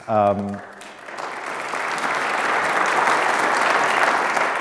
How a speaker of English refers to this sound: You can applaud wildly in a moment.